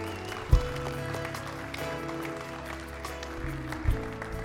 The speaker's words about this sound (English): And that's worth celebrating. That's worth cheering. But you know, the next step is we find out, and yeah, you can cheer. You can cheer. Come on.